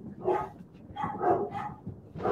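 Dogs bark at a passing car in a quick, uneven series of four or five sharp barks, moderately loud, with no one talking.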